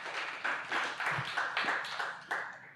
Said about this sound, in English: So let's applaud Sean.